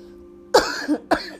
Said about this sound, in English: Sorry about the continued coughing.